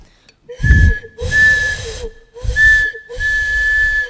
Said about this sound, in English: The sound of the train as I sit by the window watching the live film go by.